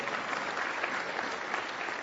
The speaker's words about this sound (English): He was awesome. Let's give him a clap. Yeah, it was brilliant.